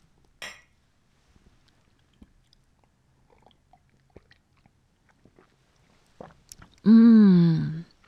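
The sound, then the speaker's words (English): A single sharp clink of ceramic coffee mugs in a toast, then quiet, sparse sipping of coffee and small slurps, ending in a loud, drawn-out voiced sigh of satisfaction. “And then we can bring it to right now when we cheers, you know, and cheers.”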